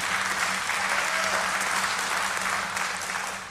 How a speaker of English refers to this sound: Yeah, go ahead. You can clap for that. I'm going to encourage that right now. Yeah.